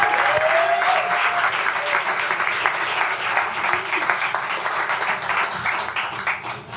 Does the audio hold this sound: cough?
no